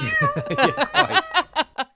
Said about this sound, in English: No, is that the cat?